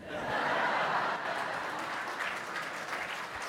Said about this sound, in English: It's the first time you've clapped in my preaching since I've been here.